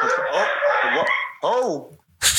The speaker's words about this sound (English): Sorry. My roommate stepped on his dog's paw.